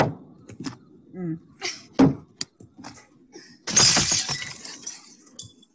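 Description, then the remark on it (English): A few sharp thuds of rocks that a woman throws at her father's house, then a loud crash of glass shattering with bright, scattering shards, while voices talk faintly underneath. “It's where older Jenny returns to her father's house and is throwing rocks at it.”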